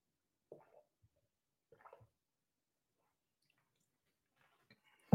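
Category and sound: food or drink, sipping a drink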